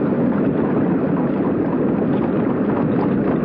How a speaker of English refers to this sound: There. It is better now. Such a noise won't hurt you, Felipe. It's just the sound of the water.